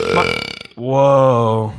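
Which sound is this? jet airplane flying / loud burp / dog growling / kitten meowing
loud burp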